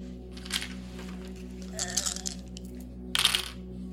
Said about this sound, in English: Okay, one success exploding. Exploding again. Exploding again! I just rolled 3 tens in a row on the same dice.